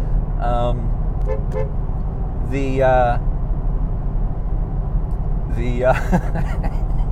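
A car horn honks in three short, separate toots spread across several seconds, fairly loud, over a steady low rumble.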